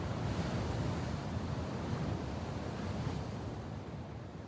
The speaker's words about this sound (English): The teal green sea churns below.